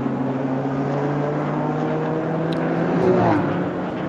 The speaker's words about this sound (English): Into the pits comes the KTM Crossbow, and the car that's been suffering a lot in the course of the race.